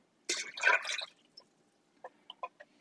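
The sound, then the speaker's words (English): A short, wet glugging pour of a 15-ounce can of water sliding into a cooking pot, followed by a few quiet, scattered drips and plops. Moderately loud, with no one talking. “Because this 15-ounce can, of course, is like 2 cups. So we just chunked him in there.”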